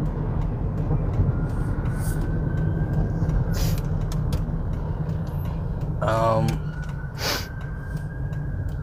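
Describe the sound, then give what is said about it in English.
Steady, loud low rumble of road traffic rolls on throughout, like cars moving by in a city in Texas, with brief higher sounds and a short tonal burst breaking through near the end. “Are you stopping or are you going? Oh man, cars.”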